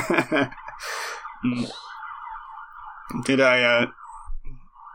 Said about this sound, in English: sirens now. the joke police are coming.